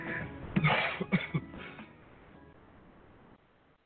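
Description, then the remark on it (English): Three quick, harsh coughs in close succession, moderately loud, followed by a fading low hum. “Cough, cough, knock, knock.”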